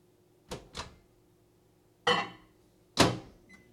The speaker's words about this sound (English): Put a couple of those little chocolate bits in there. All right, now we're going to put it in the microwave for about, 20 seconds each time, stirring in between.